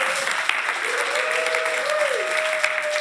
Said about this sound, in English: Welcome, guys, to New Vision, and we're excited to have you guys here. Give him a round of applause, guys.